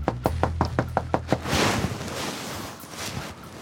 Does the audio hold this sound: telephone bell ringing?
no